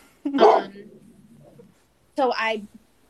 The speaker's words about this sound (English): Stop. Stop barking. You're not a guard dog. Stop.